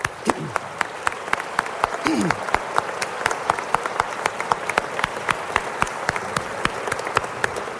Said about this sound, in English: Good afternoon, and let's give a round of applause for our vocalist,